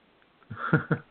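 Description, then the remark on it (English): A short, throaty burp, rumbling low for about half a second before a quick second gulp, then a brief voiced sound cuts in at the very end. “It's giving you the burps?”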